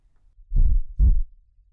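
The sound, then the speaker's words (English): Two deep, muffled heartbeat thumps in quick succession, low and heavy, like a single lub-dub pulse, with near silence before and after. “The steady thump, thump, thump as you catch your breath or feel anxious or surprised.”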